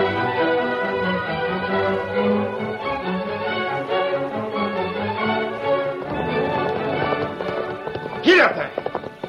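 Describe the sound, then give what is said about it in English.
Thundering hoofbeats of the great horse Silver from The Lone Ranger drum steadily beneath loud, dramatic orchestral music, and a shrill horse whinny rings out near the end. “From out of the past come the thundering hoofbeats of the great horse, Silver.”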